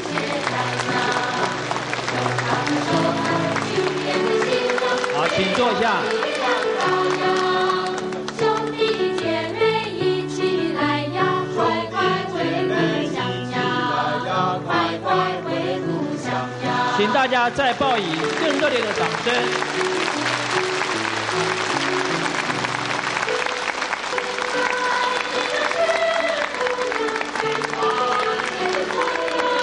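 Enthusiastic applause from a standing audience welcoming the arrival of master Shangqing Xiahai Wushang Shi at the venue, loud and sustained for about half a minute, blended with steady tonal music playing underneath throughout.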